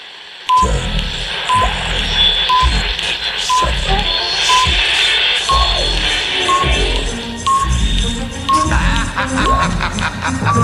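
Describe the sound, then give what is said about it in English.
Telephone dialing tones: a steady series of short electronic beeps repeating about twice a second, heard over a busy background of rhythmic low thumps and clatter. “That's me calling you right now.”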